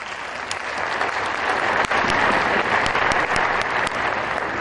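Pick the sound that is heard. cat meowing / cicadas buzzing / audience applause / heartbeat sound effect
audience applause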